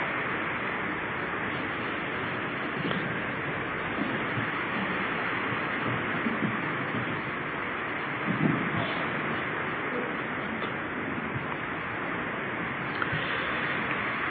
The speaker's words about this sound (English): We can hear the rain on the roof as we listen to the rain.